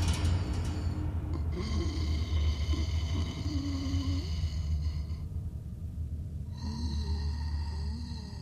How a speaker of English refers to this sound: I whipped my head back to face the wall, holding my breath, trying to hear any noise. And that's when I noticed it. Pained breathing.